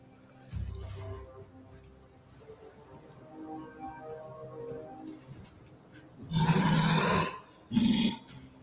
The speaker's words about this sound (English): Oh. I'm hearing growly monster things.